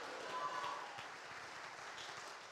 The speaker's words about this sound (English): Come on, clap your hands and shout hallelujah.